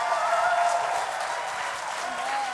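The Strong Tower church audience applauds and cheers for its newest members, a dense, steady wash of clapping with scattered whoops and shouts riding on top, sustained at an even loudness throughout.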